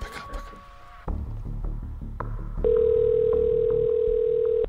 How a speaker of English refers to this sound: Who lets their phone ring this many times? You probably don't pick up a random number that has like 20 digits on it.